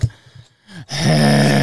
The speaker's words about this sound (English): That's a skiff horn sound. Skiff horn.